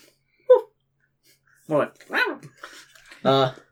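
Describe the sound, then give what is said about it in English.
A person imitates Tenpenny's dog, Izu, a character in a role-playing game, giving a quick yip followed by three louder, drawn-out barks at uneven intervals, voiced close to the microphone with quiet pauses between. “I will be playing Tenpenny and his dog, Izu.”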